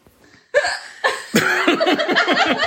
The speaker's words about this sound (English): They already sound defeated. There's the hiccups.